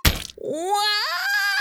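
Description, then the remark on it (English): A sharp, heavy thwack of a hammer accidentally slammed down on a teacher's toes at school lands first, followed right away by the teacher's loud, sustained wailing scream that swoops upward in pitch and holds. “Snaggletooth, walked by, he accidentally slammed his hammer right down on Mr. Snaggletooth's toes.”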